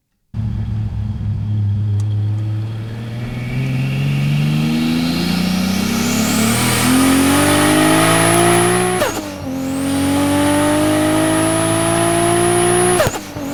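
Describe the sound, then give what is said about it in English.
A Toyota Supra MK4's 2JZ engine roars up through the revs, rising steadily in pitch, dips briefly at a gear change, then climbs again. It is loud, with no talking. “MK4 Supra 2JZ. You know what they say? It's one of my favorite sounding cars of all time.”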